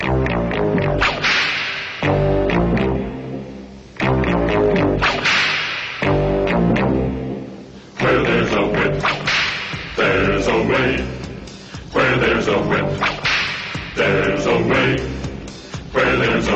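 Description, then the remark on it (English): An orc marching song: voices sing a steady march with full musical backing, punctuated by loud, sharp whip cracks landing roughly every two seconds throughout. “I quite like that whip song. It's just bad enough to be good.”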